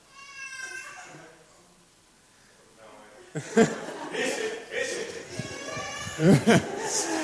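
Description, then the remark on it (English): A person imitating a Middle Eastern shepherd gives a drawn-out, high, sing-song call to sheep, then after a pause a burst of laughter and chatter from a group follows, with another short bleating call near the end. “Can you do your best sheep call?”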